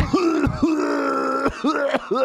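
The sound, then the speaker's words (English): A parrot, standing by a coffin, imitates a dead woman's cough: a few hoarse, groaning hacks in quick succession, each ending in a sharp catch, fairly loud. “And the parrot started coughing and making the exact sound.”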